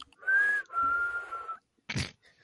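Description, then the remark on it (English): A person whistles two sustained notes, the second held longer and wavering slightly, followed by a brief burst of noise like a laugh or breath. “You're whistling.”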